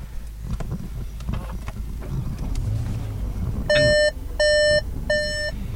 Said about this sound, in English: Caution, the engine is running. There's a lot of beeping. The door is open.